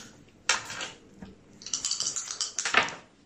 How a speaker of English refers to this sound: You get to reroll 2 dice. Because which one? Reroll those 2.